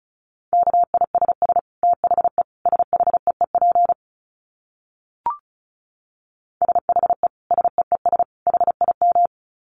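Fast Morse code beeps at 35 words per minute in a steady, single-pitched tone, keyed in quick on-off bursts. Two runs of code are separated by a silent pause broken only by a brief click.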